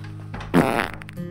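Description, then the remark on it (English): A single loud, buzzy fart rips out on a table where people are playing board games, lasting under half a second, with a low steady hum in the background and no one speaking. “who ran into the room at one point, jumped up on the table where we were all playing, and blessed us with a sour green fart.”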